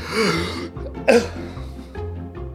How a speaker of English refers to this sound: That was a weak cough. My bad.